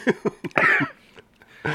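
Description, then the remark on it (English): A burst of harsh coughs: three quick hacks followed by a longer raspy one, then a brief pause and another rough cough at the end. “That was worthless trying to mute that cough.”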